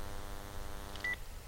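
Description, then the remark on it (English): A brief, single electronic beep from a house landline phone's keypad as someone checks the phone after it rang, short and clear over a steady low background hum, with no one speaking. “I'm just, I was checking the landline for a second, because that's what was ringing.”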